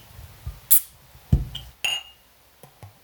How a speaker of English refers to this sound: Right, so shall we open the beer? Yeah, let's open the beer.